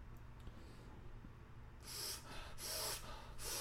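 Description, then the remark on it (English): Heavy, dramatic breaths come in a series of four airy, hissing bursts after a quiet start, each inhale or exhale rough, with no talking. “Yeah, more dramatic breathing.”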